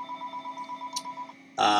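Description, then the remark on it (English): A telephone rings with a steady, warbling electronic trill that pulses rapidly, then a much louder, brighter ringing burst cuts in at the end. No one speaks. “I guess someone else will have to answer that phone.”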